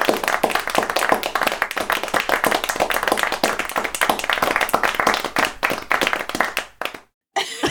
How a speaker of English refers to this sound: Put the applause on right now. What button is it?